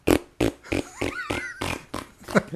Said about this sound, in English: Oh, he just farted out of here. Certainly did.